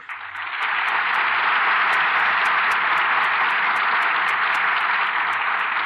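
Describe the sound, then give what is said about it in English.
Sustained applause from a large studio audience as the curtain falls on a Lux Radio Theatre broadcast of Slattery's Hurricane, greeting its stars Maureen O'Hara and Veronica Lake; a dense wash of clapping that swells quickly at the start and holds steady and loud throughout, with no voices. “The curtain falls on Slattery's Hurricane, and here are our stars who certainly deserve your applause.”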